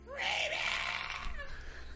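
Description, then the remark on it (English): A person lets out a loud, strained scream that stretches for about two seconds, pitch wavering and sliding downward toward the end, with no other talking, voicing Reek, a drunk character, screaming as he leaps through the air. “So he's screaming as he's doing it.”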